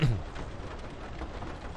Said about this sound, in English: Train ambiance right here. And rain splatting up against the train car makes me feel good.